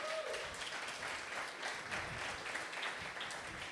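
An audience breaks into sustained applause for moms, many hands clapping in a dense, steady crackle that stays fairly loud and even throughout, with no voices standing out.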